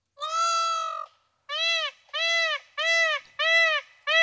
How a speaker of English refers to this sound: Peacocks. They're just all over the news these days.